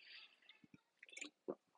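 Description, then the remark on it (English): Someone takes a quick swig of water: a few soft wet squelches and clicks, then a distinct gulp or two. Quiet overall, with no talking. “Sorry, I keep taking swigs of water.”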